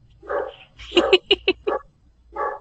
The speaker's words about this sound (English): Stupid dog. Ruff, ruff, ruff. Is that your puppy? That's our dogs. Give them a moment.